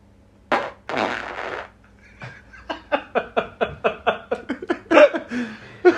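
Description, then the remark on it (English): A loud, raspy fart bursts out, then after a short pause continues as a long sputtering run of rhythmic pops, fairly loud, with no talking. “Careful, on I fart, this time I won't aim it at you, sir.”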